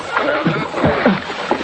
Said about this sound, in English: I've been rowing around trying to pick up survivors.